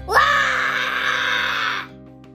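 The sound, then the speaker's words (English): A voice imitates a toy dragon's fiercest roar in a children's story: one loud, sustained, raspy growling cry that rises sharply at the start, holds steady for nearly two seconds, then cuts off abruptly. “The toy dragon roars his fiercest roar. Can I hear your roar?”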